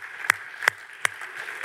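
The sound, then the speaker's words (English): Three sharp, evenly spaced claps ring out in slow rhythm over a steady, faint background hum, with no voices. “And so it's just, right, it's a big, you can clap for that, come on.”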